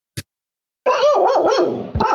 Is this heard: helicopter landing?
no